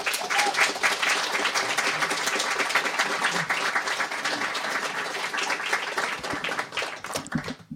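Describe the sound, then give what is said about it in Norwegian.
Sustained audience applause welcoming actor Khalid Mahmoud, a dense wash of many hands clapping at steady loudness for several seconds, thinning into scattered individual claps near the end. “Gi ham en varm applaus.”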